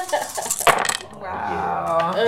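Twelve dice clatter and rattle across a hard tabletop in a quick burst of clicks for about a second during a tabletop role-playing game roll, followed by a drawn-out vocal exclamation.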